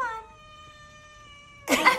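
A cat lets out one long, drawn-out meow, clear, its tone holding steady for over a second before a sudden loud burst of noise cuts in, as the cat comes onto a couch where a dog is lying.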